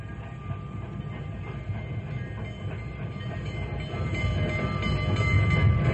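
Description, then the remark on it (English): A passenger train arriving at a station rumbles and clatters steadily on the rails, its heavy low roar swelling louder over the last couple of seconds as it draws near; no one speaks. “Boy, we got here just in time. Here comes the Fireball Express now.”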